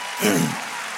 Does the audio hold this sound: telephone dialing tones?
no